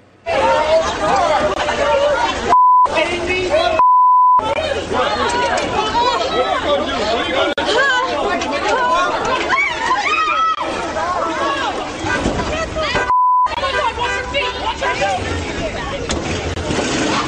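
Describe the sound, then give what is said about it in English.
A large, agitated mob at a BLM rally at the city jail and police precinct in Portland, Oregon, surrounding a man and woman in their truck, chatters and shouts all at once in a dense, continuous, loud roar of overlapping voices, broken by a few short beep tones. “A mob surrounded a man and woman in their truck.”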